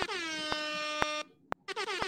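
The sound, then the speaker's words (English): A loud, blaring air horn sound effect with rich stacked harmonics, sounding in a long blast, cutting out briefly, then resuming, punctuated by sharp clicks at a steady half-second beat. “Got to hit y'all with them air horns.”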